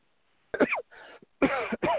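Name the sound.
coughing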